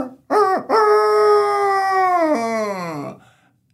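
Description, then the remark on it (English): A voice imitates a rooster crowing: a short rising note, a brief break, then a long sustained call that dips in pitch and fades, loud and alone. “Instead, the rooster just crowed.”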